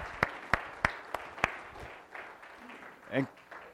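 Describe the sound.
A short burst of clapping in a church sanctuary, five sharp, evenly spaced claps in a steady rhythm, fading into quiet murmuring and a brief voice afterward.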